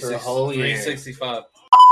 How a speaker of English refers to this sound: All right, we have him back in. There's probably a little awkward beep in between there. It said beep, and then now we're back.